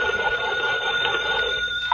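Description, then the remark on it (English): A hand-crank telephone at a lighthouse, its little crank turned to ring it long and loud, rings steadily and loudly for about two seconds, a continuous metallic trill with no voices over it. “I turn this little crank here? Yes, ring it long and loud.”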